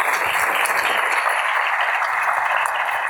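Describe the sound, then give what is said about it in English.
Steady, dense applause from a crowd welcoming Frank Cesno and Jason Rezaian to the stage at GW, a continuous wash of many hands clapping at full volume for about three seconds with no voices over it. “Now, without further ado, please help me welcome to the stage Frank Cesno and Jason Rezaian.”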